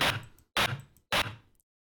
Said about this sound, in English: White noise is your bog standard random number stream. Quite hard sounding compared to pink noise.